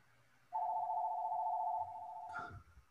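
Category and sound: household object, telephone ringing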